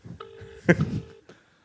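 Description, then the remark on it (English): A telephone line ringing: two steady, buzzy tone bursts separated by a short clatter, with a faint low rumble beneath and no one speaking. “So give him a call. Give him a call.”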